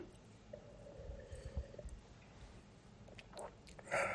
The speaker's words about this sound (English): Long sip.